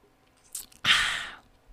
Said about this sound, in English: Let me just have a quick sip of this beverage.